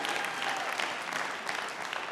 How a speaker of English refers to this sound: Is it good to be here? Let's hear some clapping.